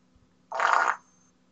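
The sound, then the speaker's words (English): A single tiny fart sound, a short raspy burst lasting about half a second, sitting over a faint low hum with no one talking. “Was that the world's tiniest fart?”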